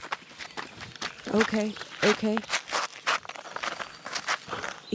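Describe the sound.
A beaver biting into a man's leg: a run of rough, crunching bursts in an uneven rhythm, broken by a couple of short, pitched squeals, with a person briefly speaking.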